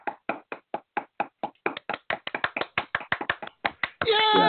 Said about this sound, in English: I mean, it was, you know, we can go ahead and just do that silly little clap.